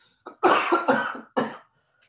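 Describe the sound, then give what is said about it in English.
A harsh, raspy cough: a short lead-in followed by three forceful bursts in quick succession, then quiet. No one speaks. “Yeah, you're going to scare some fans with that cough, you know?”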